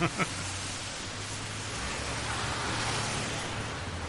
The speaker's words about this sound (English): Sounds like a car now in this one. Oh. In a rainstorm. You're waiting at the bus stop and the cars are going by.